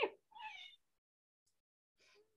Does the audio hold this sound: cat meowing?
yes